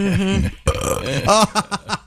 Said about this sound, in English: Does Tupperware make something for this? You got to burp it.